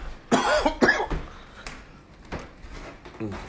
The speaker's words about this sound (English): And this would not be an episode without me coughing.